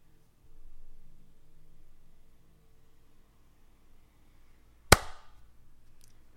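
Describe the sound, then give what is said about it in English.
A single sharp hand clap rings out after several seconds of quiet low rumble, sudden and loud with a brief decaying tail. “Clap-tastic.”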